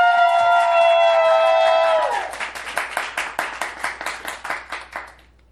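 A debate audience applauds to vote for one debater as the winner, starting with a loud, sustained high whooping cheer over the clapping, then settling into steady, rhythmic clapping that gradually thins and fades out.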